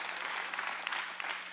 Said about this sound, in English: You ought to clap right now like God wants to burst something out of you.